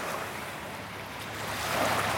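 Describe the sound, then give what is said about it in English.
Ocean waves wash onto a beach in a steady, hissing roar of surf that swells louder toward the end. There are no voices, only a faint rumble of wind beneath the water. “So what happens if a wave comes up and knocks it down?”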